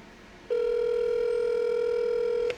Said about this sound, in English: The anticipation is killing me. I know. There's nothing quite as tantalizing as the ring of a phone on a podcast.